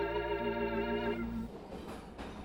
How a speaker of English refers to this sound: Ah, the open railway. This sure is a pleasant way to travel.